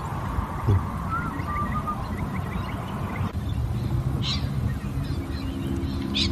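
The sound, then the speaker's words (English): Loud parrots call and squawk in a busy chorus at sunset in Australia, sharp harsh cries bursting out over a steady wash of background noise, with other birds chirping faintly and no one talking. “In Australia, you get loud parrots.”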